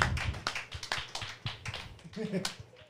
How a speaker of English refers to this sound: Well, why don't we give God a big clap? Come on, let's stand. We need to give God a big clap. We really do. We need to give him a big clap. Yes, and you guys need to clap your hands. You really do.